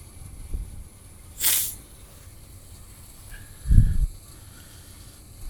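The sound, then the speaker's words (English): Steady soft rain hiss fills the background, broken by a brief bright gust of spray-like hissing and, later, a short low rumble of thunder. No one speaks. “Let's just sit here and listen to the rain. Listen to the storm.”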